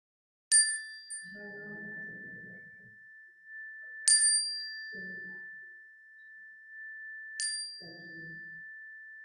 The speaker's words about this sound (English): When I sound the chime, I invite you to speak the names of those on your heart into our sanctuary.